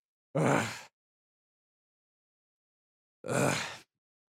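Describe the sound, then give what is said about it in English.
A voice imitates someone in pain: two short, breathy, strained groans or pants, each about half a second long, separated by a few seconds of silence, fairly loud. “He's kind of panting and like gritting through the pain.”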